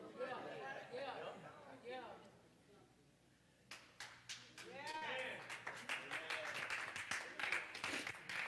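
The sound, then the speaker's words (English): An audience breaks into clapping after a brief lull, starting as scattered claps and building to steadier applause, with voices talking and chattering throughout. “I like that clap.”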